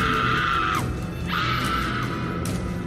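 A girl lets out two long, piercing, petrified shrieks, high and sustained, each cutting off sharply, followed by a brief third cry; loud with no talking.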